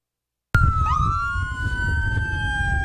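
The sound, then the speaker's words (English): Ambulance sirens start abruptly after a moment of silence as ambulances cross onto U.S. soil carrying two American citizens to a Texas hospital, several overlapping wailing tones sliding in pitch, loud over a low rumble of traffic or engines. “Sirens sounding as ambulances cross onto U.S. soil, carrying two American citizens to a Texas hospital after a terrifying kidnapping that left one of them injured and two others dead.”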